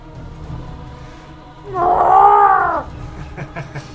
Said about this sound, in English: The sea beast lets out a couple of sharp, like, screeches.